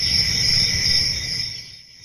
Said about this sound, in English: If your house is anything like mine, we've got grasshoppers and crickets all over the neighborhood. And that could be due to the mild start to Arizona summer and a very mild spring.